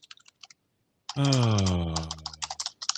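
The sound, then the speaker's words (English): Quick, sharp keyboard clicks tap out in short bursts, pause, then keep clattering beneath a loud, sustained droning tone that slowly slides downward in pitch. “Keyboard rock. Boy, good stuff.”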